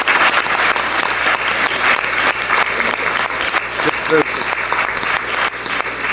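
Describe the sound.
Sustained audience applause fills the whole stretch, a dense, steady patter of many hands clapping at an even loudness, with a few faint voices mixed in beneath it.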